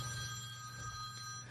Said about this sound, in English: Worst time to get a phone call.